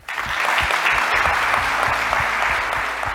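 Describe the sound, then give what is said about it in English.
A crowd at a Bloom event breaks into sustained applause for the organizers from Bloom, a dense wash of many hands clapping that rises quickly and holds steady at a loud level throughout. “And so I really wanted to just give a round of applause for everyone from Bloom who organized this event and allowed me to come here.”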